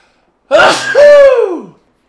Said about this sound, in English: Oh, I gotta sneeze.